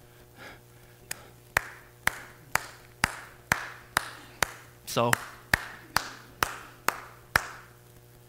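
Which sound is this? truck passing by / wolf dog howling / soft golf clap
soft golf clap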